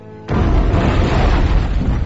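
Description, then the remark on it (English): A bomb explosion, set by Two-Face to kill Batman and Robin, bursts in abruptly after a brief quiet moment, then a deep, loud, rumbling roar holds steady for nearly two seconds without fading. No voices are heard. “And what a real pleasure to kill two birds with one bomb.”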